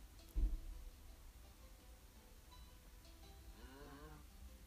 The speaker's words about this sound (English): Sorry, a couple cows over there.